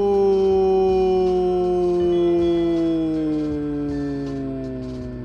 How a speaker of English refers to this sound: Or maybe it's more of an echoey scream. It's hard to say.